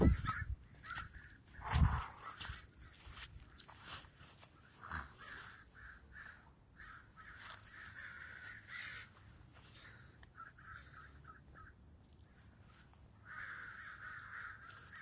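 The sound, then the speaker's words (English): Many crows caw harshly and repeatedly, overlapping in a noisy, continuous chorus that fills the air, with a few sharp thumps early on and no talking. “Got a murder of crows around these parts.”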